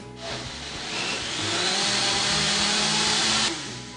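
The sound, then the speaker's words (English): A blender motor roars loudly and steadily for about three seconds, its whine building slightly in intensity before cutting off abruptly, with no talking, as a chunky mash is blended until smooth with the seeds completely blended in. “Scrape down the sides to get those nice chunky bits down, and let the blender really finish this and make it smooth.”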